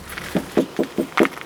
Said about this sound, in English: he jiggles a key in the door lock.